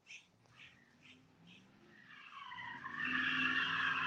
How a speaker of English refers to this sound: You guys hear that? What the hell? Oh, it's a truck. Wish I can turn this damn camera around. This guy's coming through like a racehorse. Oh, there he goes.